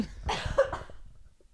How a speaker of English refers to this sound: I'm going to cough.